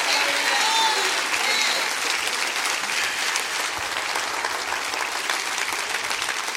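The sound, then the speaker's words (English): A large gathering claps together in sustained, dense applause, steady and fairly loud throughout, with faint voices and scattered cheers mixed into the crowd noise, after a preacher asks them to rejoice and clap their hands. “Can you rejoice with me and clap your hands and receive the word here today?”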